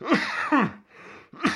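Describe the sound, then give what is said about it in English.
Three harsh, raspy coughs in quick succession, the first two loud and close together, then a short pause before the third. No one speaks. “So I apologize, but my coughing will be confirmation to you people of my dedication to doing this.”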